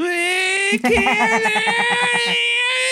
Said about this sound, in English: give us your nerd voice cannon scream.